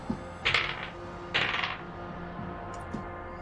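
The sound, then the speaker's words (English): Dice, rolled as d6 plus 3 for movement in a tabletop game, clatter across a hard tabletop in two quick rattling bursts, each tumbling briefly before settling, fairly crisp, with a few faint clicks afterward and no talking. “Oops, those are the wrong dice.”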